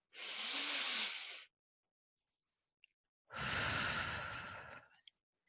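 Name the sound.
person yawning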